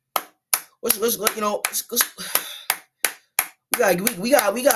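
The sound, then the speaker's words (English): Sharp hand claps, clapping in praise of the Jaguars, ring out about ten times at an uneven, roughly steady pace, loud and crisp, with a man's voice talking or vocalizing between and over them. “Clap it up for the Jaguars, man.”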